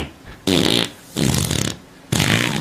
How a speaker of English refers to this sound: A couple of farts in a row.